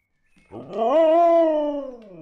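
A dog, Cookie, lets out one long, loud howl, the pitch rising at the start, holding steady, then sliding slowly down over about two seconds, with no talking.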